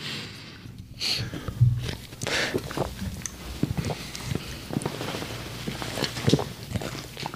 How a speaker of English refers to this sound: Oh, my gosh. Okay, I got 7 gulps. What's your math equation on that one? 11 minus 7, so that's a 4.